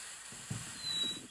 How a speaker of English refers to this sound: but there's a bird that makes this interesting whistle noise where it goes. Oh yeah, we have those. And so here's the actual sound of the bird.